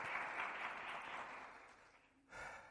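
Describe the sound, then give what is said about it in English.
An audience claps their hands in praise to God in a dense, sustained wash of applause that tapers off briefly before another burst of clapping swells up near the end. “Somebody give him a hand clap of praise today.”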